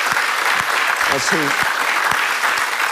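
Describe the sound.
A crowd applauds steadily, a dense wash of clapping that holds at a constant level throughout, with a brief voice or cheer rising out of it partway through.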